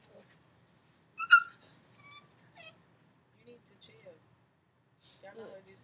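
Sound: dog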